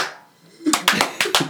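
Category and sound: human body sound, hand clapping demonstration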